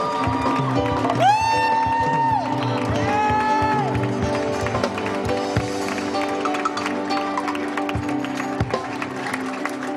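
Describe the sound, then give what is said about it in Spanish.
An audience applauds God steadily together for several seconds, a dense wash of clapping with crowd voices and rising shouts or sung tones mixed in over a sustained musical backdrop. “A ver, aplaudo a su Dios.”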